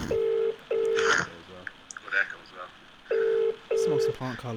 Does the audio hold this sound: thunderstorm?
no